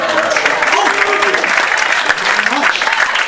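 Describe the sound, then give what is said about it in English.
An audience claps steadily for a few seconds after a mention of a 20th wedding anniversary, a dense, even patter of many hands with some cheering voices mixed into the wash of applause. “It's always nice to get applause for inertia.”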